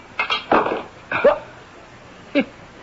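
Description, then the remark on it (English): A heavy wrench strikes a window pane with a solid knock, then clatters and bounces off in a few quick, uneven impacts before one last sharp tap, leaving the glass uncracked. Fairly loud, with no talking. “It bounced right off the window pane. Look, the glass isn't even cracked.”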